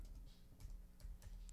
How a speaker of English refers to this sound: Oh, I forgot the one doesn't work on this keyboard. Oh, damn. I spelled this one out.